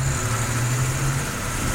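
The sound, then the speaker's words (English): A big red London Routemaster-style double-decker bus named ALF, used for Local Haunts city sightseeing tours in Portsmouth, idles steadily, a constant low rumbling hum with a broad mechanical hiss above it, unbroken throughout and with no one speaking. “It's called ALF, and it's a great big red London bus, one of the old Routemaster style.”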